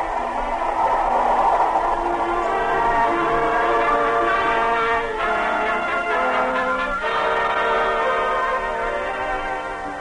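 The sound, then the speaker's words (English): A loud train horn blares steadily for about ten seconds over the rolling rumble of a moving train, its chord wavering and briefly dipping midway before sounding again. “Sitting there on the train that day, I wondered where research would take me.”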